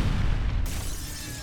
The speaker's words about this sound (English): Suddenly, an explosion rocked the foundation of the church, tearing a 7-foot hole in the wall and sending bricks and glass everywhere.